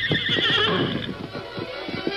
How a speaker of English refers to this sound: Straining against the rope, which the Lone Ranger hooked around his own saddle horn, the great horse Silver struggled to drag Scout and Tonto free of the quicksand which held them.